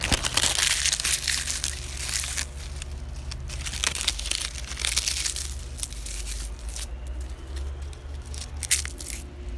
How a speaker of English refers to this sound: Damn it, I had a leaf and it felt crunchy as hell. Listen to this. That's a real crunchy leaf.